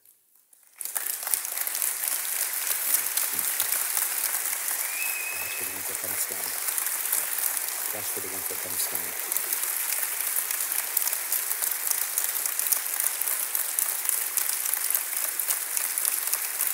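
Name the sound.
audience standing and clapping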